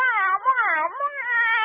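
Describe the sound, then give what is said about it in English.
A cat lets out a long, drawn-out meow that wavers up and down in pitch, fairly loud, lasting under two seconds with no talking over it. “Meow. You have a hairball.”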